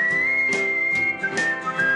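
A person whistles a bright, steady tune that holds its pitch and shifts notes slightly, over a rhythmic backing beat with regular thumps about twice a second, on the Rick and Bubba Show radio broadcast.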